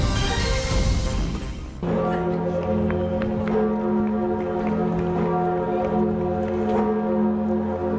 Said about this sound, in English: To the mournful tolling of the great bell at the Notre Dame Cathedral, we say good morning to you.